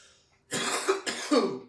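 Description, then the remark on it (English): Two harsh coughs in quick succession, each a loud raspy burst, the second slightly rougher as if clearing the throat; no talking. “That's probably the cigarettes coughing, but yeah, I don't know.”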